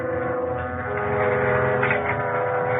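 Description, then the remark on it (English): A self-service elevator comes down from an upper floor after its buzzer is rung, with a steady, loud mechanical drone that holds an even, harmonic hum throughout, swelling slightly partway through, with no voices present. “The elevator was upstairs somewhere where the girl had just taken it, and I rang the buzzer for it.”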